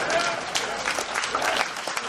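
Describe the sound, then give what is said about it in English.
A crowd applauds steadily, dense overlapping claps filling the space at moderate loudness, with a faint murmur of voices beneath. “And you don't have to clap at that.”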